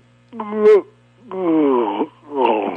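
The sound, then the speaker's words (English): A person performs an exaggerated, drawn-out yawn in three moaning vocal swells, mimicking a chimpanzee bored with his own speech. It is fairly loud over a faint steady hum. “Make a big yawn at the end as though the chimpanzee was bored with his own speech.”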